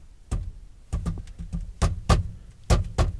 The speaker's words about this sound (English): all you have to do is go to the abandoned Payless Shoes and knock like this on the back door.